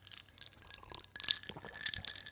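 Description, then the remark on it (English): Ice cubes clink and rattle against the sides of a glass of water, a few bright taps and jingles with a faint watery slosh, no voices. “Now, I had a glass of water and ice just like this.”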